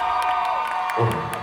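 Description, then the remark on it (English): A large concert crowd screams and cheers loudly and continuously as a rapper is welcomed to the stage, with scattered whoops rising above the roar, heard from within a big audience. “All right, I want you to scream as loud as you can.”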